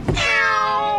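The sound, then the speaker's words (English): A cat piano sounds a single drawn-out cat yowl, loud, rising sharply after a soft thump and holding a strained, wavering pitch for about a second with no talking. “This is effectively a twist on the cat piano”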